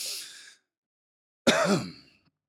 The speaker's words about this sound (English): Sorry, I coughed. It's very unprofessional. I'm going to leave it in there because that's just the kind of low-tech shit I'm into.